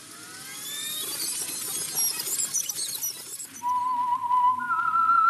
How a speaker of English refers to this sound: Who is that, anyway? Who is that whistling? I am the Whistler.